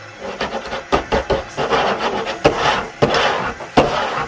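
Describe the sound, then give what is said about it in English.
Restless scratching and rasping against wood behind a closed door, a dry continuous scraping broken by several sharp knocks or thumps at irregular moments. No voices. “And so you see this closed door to the right, and you hear some kind of scratching happening behind the door.”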